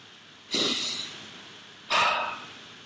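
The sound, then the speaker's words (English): Two deep inhalations through both nostrils, the first longer and the second shorter, each an airy hiss separated by a brief pause, with no talking. “When's the last time you were thankful for breathing through both nostrils?”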